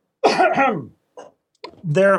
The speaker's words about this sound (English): Sorry, I have to cough. Just give me a second.